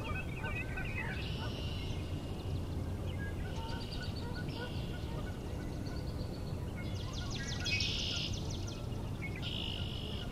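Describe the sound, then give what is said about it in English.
Distant bird song resembling a Northern Cardinal: several short, high, buzzy phrases repeated every couple of seconds, fairly faint over a steady wash of outdoor background noise. “Sound kind of like Northern Cardinal singing, but a little off.”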